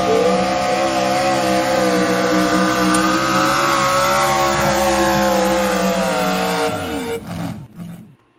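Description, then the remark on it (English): A truck engine roars loud, revving hard and accelerating with a sustained, climbing growl before cutting off and fading away near the end. “I just hope our show doesn't go the way that guy drove his truck.”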